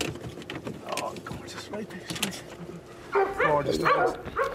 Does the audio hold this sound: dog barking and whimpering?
yes